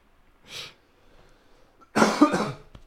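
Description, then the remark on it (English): A soft breathy cough, a brief pause, then a louder double cough, harsh and raspy, with no talking around it. “Why are you coughing?”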